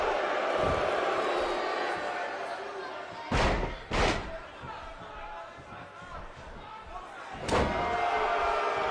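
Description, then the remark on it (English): Heavy impacts of a wrestler picking up his opponent and slamming him down onto the ring mat, a couple of loud booming thuds in quick succession and another a few seconds later, over a steady roaring crowd and commentary. “Picks him up and slams him down.”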